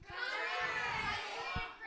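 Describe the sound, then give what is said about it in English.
A crowd of children all shout their favorite kinds of music at once. It is a dense, overlapping jumble of high voices that stays loud and steady for about two seconds, with a few low thumps underneath. “All of you scream it all at the same time.”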